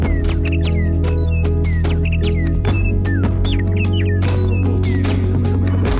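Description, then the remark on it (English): Birds sing and chirp in quick, repeated phrases over a steady, sustained low musical drone, with sharp clicks and taps scattered throughout. “They sing it over us and around us in their songs and in the songs they no longer sing.”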